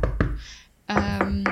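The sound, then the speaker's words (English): A few sharp, hollow knocks on wood, about four raps in quick irregular succession, fairly loud, with a faint murmur of voice between them. “Let's knock on wood.”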